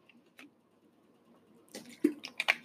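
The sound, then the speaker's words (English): Quiet liquid sounds of someone sipping water, a few soft slurps and a wet swallow clustered near the end, with faint clicks before. “I had to get me a sip of water before I get started.”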